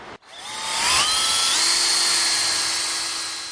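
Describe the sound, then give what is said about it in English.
A power drill whines up to speed and holds a steady high-pitched buzz as it bores a tap hole into the wood of a tree to let the sap flow out, loud, running continuously for a few seconds with no talking. “And when you drill, you want to do it kind of at an angle sloping down so that the sap can flow out of the tree more easily.”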